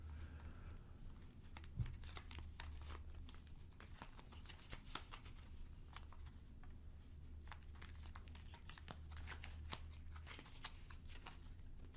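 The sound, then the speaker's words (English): Tarot cards being shuffled: a steady stream of quick, crisp papery flicks and riffles running throughout, over a low constant hum, with no one talking. “With that in mind, as I shuffle, just take a deep breath, center yourself, and try to bring calm and focus.”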